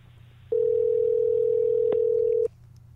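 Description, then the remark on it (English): A single ring of an outgoing phone call: a steady, clear electronic tone lasting about two seconds, starting and stopping abruptly over a faint low hum, with no one speaking. “If he picks up, I have no idea what's going to happen.”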